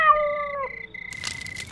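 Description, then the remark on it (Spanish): A single clear cat meow with a falling drawn-out pitch, followed by a thin steady tone and some faint rustling noise. “El felino dice que para evitar malos entendidos, someterá a la guarida al fuego purificador.”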